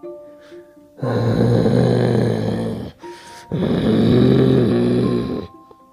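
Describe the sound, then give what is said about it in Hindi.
A man, voicing the story character Kusharam, growls like an animal in two long, rough, throaty bursts, each lasting about two seconds with a brief breath-like pause between them. The growls are loud and low-pitched. “तभी कुशाराम गुर्राने लगा, वो किसी जानवर के जैसा लग रहा था।”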